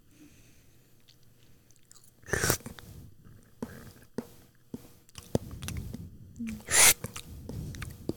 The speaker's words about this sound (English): Noodles? Mm-hmm. Really? With what? With meat. That's why I'm chewing.